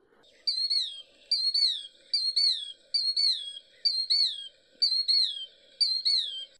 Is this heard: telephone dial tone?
no